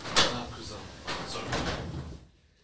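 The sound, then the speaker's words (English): A door is pulled shut: a sharp knock at the start, then a second of rolling, scraping movement before it settles and goes quiet. No talking over it. “I'll close the door.”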